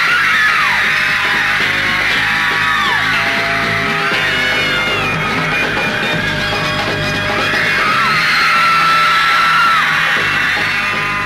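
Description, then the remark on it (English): A large crowd of New York fans screams continuously and loudly as a band arrives in America, a dense wall of high-pitched shrieks and yells that swells and surges without pause for the whole stretch. “New Yorkers turned out in force, and making allowance for an American accent, the screams might have been genuine Merseyside.”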